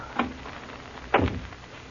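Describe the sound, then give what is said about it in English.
A door is pushed shut: a light knock or latch click, then about a second later a louder thud with a brief rattling decay, over a quiet background. “Better close the door.”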